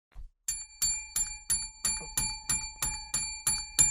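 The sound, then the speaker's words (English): A bright metallic bell rings in a fast, steady series of about ten strikes, each ringing briefly before the next, fairly loud with no voices. “Now, you don't care as much about the bell.”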